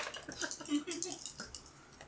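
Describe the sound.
Dice clatter and rattle across a hard tabletop in a quick burst of sharp, close clicks, with a faint murmur of voices in the background.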